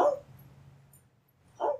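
A dog barks twice, one short bark at the start and another a moment later, moderately loud, with a low steady hum in between.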